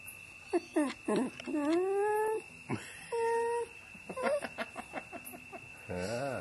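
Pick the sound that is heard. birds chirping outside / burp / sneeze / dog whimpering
dog whimpering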